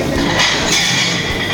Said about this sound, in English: And broken dishes.